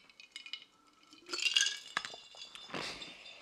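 A glass mason jar is shaken, giving off a run of bright, irregular clinks and rattles that swell into a louder burst midway, then settle into scattered jingling, with no talking.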